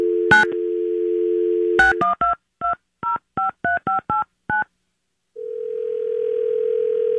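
A steady telephone dial tone hums, then a quick series of about ten keypad beeps is punched in at an uneven rhythm, followed by a pause and a ringback tone, as a call is placed from a haunted house. No one speaks.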